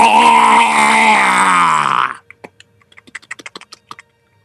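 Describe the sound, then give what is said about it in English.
A loud, sustained groaning drone fills the first two seconds, then cuts off into a rapid, irregular run of sharp, dry clicks, about fifteen in quick succession, close and crisp against silence. “And in just the 3 of your heads, you hear this eerie clicking noise accompanied by a...”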